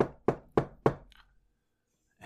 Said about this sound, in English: Well, a couple minutes later, there's a knock.